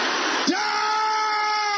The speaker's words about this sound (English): Is that the loudest the sisters can shout this word? Brothers, can you shout it louder than this? Everybody shouting it loud.